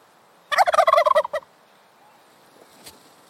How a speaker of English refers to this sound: It might also have to do with the sound a turkey makes. So turkeys are known for making some gobbling noises, some very distinct, clear noises.